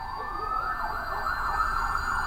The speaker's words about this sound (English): A few minutes later, the sirens are closing in.